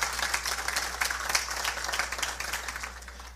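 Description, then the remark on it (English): Steady audience applause for people just blessed as pioneers, a dense patter of many hands clapping at once for a few seconds, holding fairly even in loudness before easing slightly toward the end. “Give it up.”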